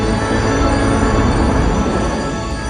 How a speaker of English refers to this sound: And then all of a sudden you saw those red, like sparkly firefly things and the THX logo is coming right at you.